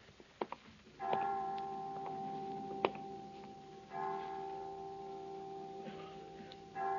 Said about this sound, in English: Well, 5 o'clock. I didn't know the children's home had chimes.